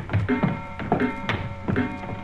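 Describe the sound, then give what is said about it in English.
Slow footsteps thud on wooden stairs, each step bringing a creaking squeak of the boards, several in an uneven rhythm, with no voices. “I wish these stairs didn't squeak so.”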